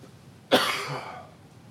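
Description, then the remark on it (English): A man, a preacher behind a pulpit, coughs once, sharp, with a rough throat-clearing rasp that trails off over about a second; no one speaks. “I can go all afternoon without coughing.”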